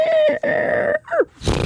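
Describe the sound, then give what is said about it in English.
A voice imitates snoring: a long nasal drone, a brief break, another drawn-out rasping snore, then a short falling snort and a breathy exhale at the end. “Snoring.”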